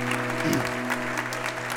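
audience applauding

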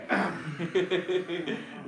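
cough

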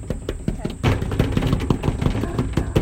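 dogs barking

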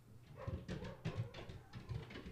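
dogs barking and whimpering

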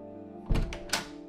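door being opened

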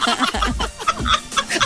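chicken clucking sound effect

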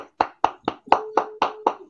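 clapping hands

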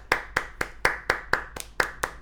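hand clapping

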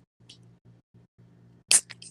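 opening a drink can

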